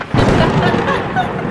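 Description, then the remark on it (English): A sudden, loud crack of thunder from a lightning flash bursts in and rolls on as a dense, rumbling roar during a nasty storm with pelting rain and rough wind, staying heavy for the rest of the moment, with no one speaking. “And then lightning flashes.”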